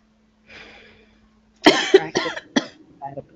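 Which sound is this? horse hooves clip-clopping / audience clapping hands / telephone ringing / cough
cough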